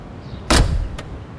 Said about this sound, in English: That huge stretch limo is pulling up right to the front of the theater. Ooh, I see it. I wonder who's inside. The car door is opening.